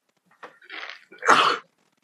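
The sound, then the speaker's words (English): A single sneeze: a short breathy intake building up, then a sharp, loud burst of air that cuts off quickly, with no talking around it. “Bless you.”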